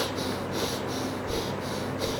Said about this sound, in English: That is breathing. He says pranayama. See, control his breath by pranayama. First, control your breath.